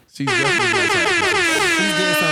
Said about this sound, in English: Can we get an air horn for that?